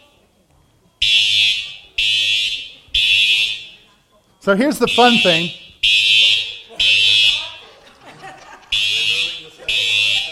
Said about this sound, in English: would you just make sure there's someone pulling the fire alarm and not an actual fire? That's false alarm. We're good.